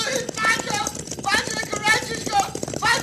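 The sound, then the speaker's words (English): A dense, rumbling clatter of many galloping hooves pounds on without a break, loud like a stampede of a cattle herd with riders on horseback, with shouting or animal cries rising over it now and then. “Do not get in front of the herd. Your horse stumbles, you'll be trampled to death.”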